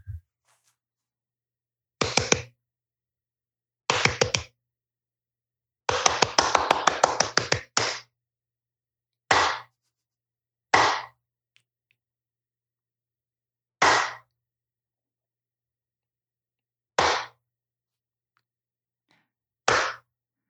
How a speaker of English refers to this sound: And this is the first time I'm saying this, but I went to the bathroom, opened the bathroom drawer, and it just sounded like a clap. And that was the instant inspiration for Macbeth, Claps Only. Can you give us like 30 seconds of Macbeth Claps Only?